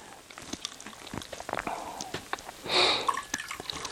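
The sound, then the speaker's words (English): Liquid trickles and drips in quick, uneven spatters, with a short, louder gush near the end as coffee is poured from a pot with its lid held on, fairly quiet. “Hold the top on when you pour it.”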